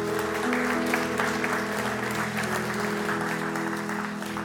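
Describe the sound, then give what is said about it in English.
An audience at a church service claps steadily for several seconds for those who raised their hand, a dense, even wash of applause over soft sustained musical tones underneath. “Would you give those a round of applause who raised their hand?”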